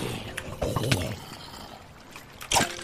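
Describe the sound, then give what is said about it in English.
Water sloshes and splashes as a rowboat is paddled along in a video game, with a few irregular strokes over a steady watery wash, the last splash loud. “since I stole your boat, I'm gonna go murder all the cows in existence out in this distant land.”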